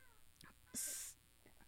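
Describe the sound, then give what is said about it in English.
A single short meow from Leon, a cat, fairly loud, with a raspy, breathy edge, lasting under half a second against faint background noise. “Leon, you just never meow in the mic, and now you're meowing over there.”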